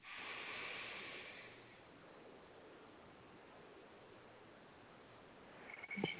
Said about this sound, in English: We're going to inhale for four, hold for four, exhale for four, and hold at the bottom for four. And just do a set of three of those.